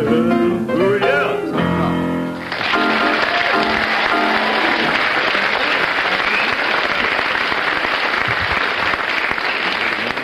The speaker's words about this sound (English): according to the audience applause, you have a slight lead over Tim and Bill on that one